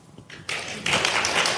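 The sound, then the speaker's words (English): Audience applause, given as a vote for the 'chaps' option, swells in after a brief quiet moment: a dense hiss of many clapping hands that grows louder partway through and keeps going steadily to the end. “Applause for chaps.”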